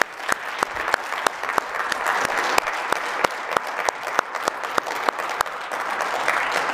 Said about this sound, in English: So we can give him a round of applause.